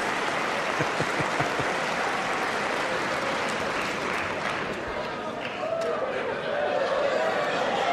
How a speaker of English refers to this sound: And here are the Democrat women sitting together, all wearing white. And they are applauding, and now they're turning around. Actually, they're applauding themselves, as you would expect women politicians to do.